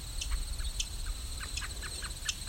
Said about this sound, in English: Catbird's doing a chup, chup, chup.